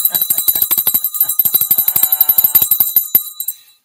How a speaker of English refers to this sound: I might go there and with a quart of beer and just sit back on the corner and ring my bell.